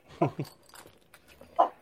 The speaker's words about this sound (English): Can you hear this dog barking at that dog?